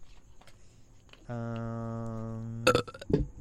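A long, loud, droning burp with a steady tonal buzz lasting over a second, followed by a short burst of laughter or chatter.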